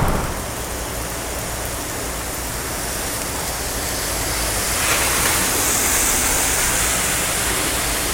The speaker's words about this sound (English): This is being recorded at a rather windy Kobe, and I'm recording outside